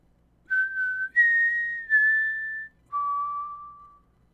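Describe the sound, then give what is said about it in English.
A clear, pure whistled four-note tune, Rue's four-note mockingjay tune: a held note, a higher one, a slightly lower one, then a long low final note, whistled alone with no talking. “Rue's four-note tone coming out of a mockingjay's mouth.”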